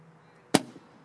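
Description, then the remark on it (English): A balloon bursts with one sudden, loud pop, a sharp crack that fades quickly into a short ringing tail with a faint second thump, surrounded by quiet background hum. “At least the balloons say amen.”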